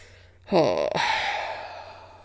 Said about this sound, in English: Literally makes me tired. Sorry for yawning.